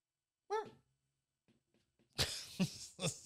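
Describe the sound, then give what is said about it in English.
A dog barks: one sharp, high yelp, a short pause, then a cluster of three rough, louder barks in quick succession. No one speaks. “TV, movies, I kid you not, there are more scenes where they've just got a random dog barking in the background.”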